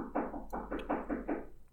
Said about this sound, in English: Dude, I have somebody knocking at my door.